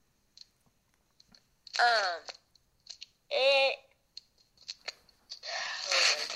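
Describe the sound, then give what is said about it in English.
Close-up microphone handling noise: scattered crinkly clicks, then a sustained papery rustle like crumpling paper right against the mic, with two short voiced sounds in between. “Wait, you're moving your mic again. I wasn't supposed to go there. I am. Yes, it sounds like you're balling up a piece of paper right in front of it.”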